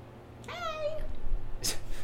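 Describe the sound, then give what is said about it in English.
A voice imitates a cat's meow: one drawn-out, wavering mewing cry lasting about half a second, clear, followed by a brief breathy rustle against a low background hum. “We've hired cats.”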